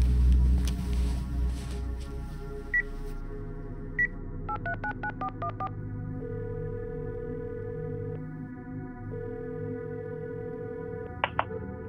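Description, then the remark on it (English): A quick string of keypad beeps as a phone number is dialed to call a sister, followed by two long, steady ringback tones, all over a low rumbling background. “I picked up my phone and called my sister.”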